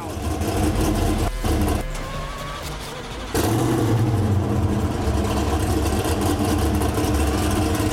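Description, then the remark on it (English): A loud, sustained simulated engine roar from an electric hypercar, revving with rising and falling pitch, then surging louder and holding a deep, rumbling exhaust note. “Can we hear what this thing sounds like? Oh, I don't know if they have like that thunder. Exhaust note.”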